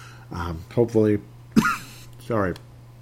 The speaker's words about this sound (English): So hopefully, pardon me, I'm almost coughing my head off here.